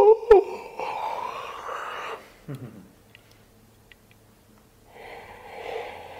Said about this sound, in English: We all know what a yawn looks like. It doesn't look like this. No, it looks like.